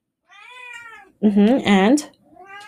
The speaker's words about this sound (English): Alfred is just so excited about all these things. He won't stop talking. What else do you have to say, kitty?